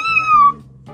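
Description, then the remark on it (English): A cat gives a single drawn-out, clear meow, its pitch sliding slightly downward before fading, followed by a brief quieter start of another sound near the end. “Here, kitty. Where the kitty at? Kitty.”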